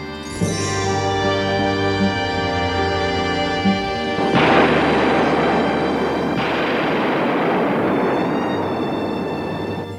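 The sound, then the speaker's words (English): A sustained tonal drone gives way midway to a loud explosion, which swells into a dense, roaring rumble of debris that carries on to the end, with no voices. “So there's a big explosion, and you don't really see what happens to Schubert, but you expect that he somehow saves himself and gets out of there, and Mark swims up.”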